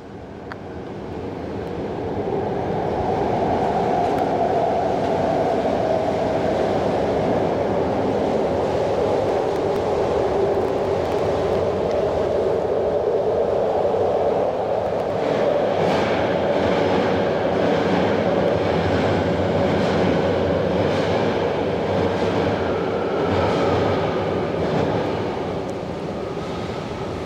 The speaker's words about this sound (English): That's your train. That's it. That's the train while it's under the bay. That's so cool.